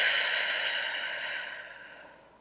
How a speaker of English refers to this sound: I'm going to encourage you to take a deep breath in through your nose, out through your mouth like through a straw.